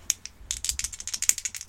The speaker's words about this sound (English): You're rolling dice. This is the point of the podcast where we do what? We roll some dice, and when we roll those dice, we get a number.